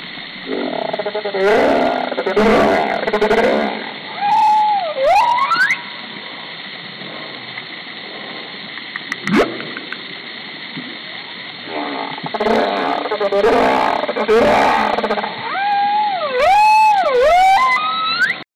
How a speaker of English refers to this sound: And lastly, this third clip is of humpback whales in Bocas del Toro.